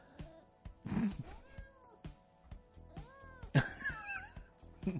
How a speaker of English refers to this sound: I just got attacked by a cat in Kevin's basement.